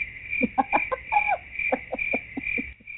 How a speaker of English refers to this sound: I'm not liking how much the two of you all love using the crickets button on the Bears. You all enjoying the crickets.